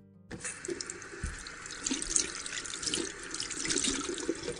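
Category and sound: household object, tap water running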